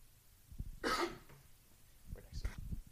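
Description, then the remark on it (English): A sharp cough bursts out, followed a second later by a shorter rasping throat clear, with faint low murmuring and breathing in between. “No, just got a cough.”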